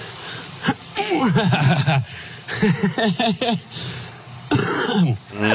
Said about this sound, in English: You hear that bronchial cough there? Yeah. Bad times.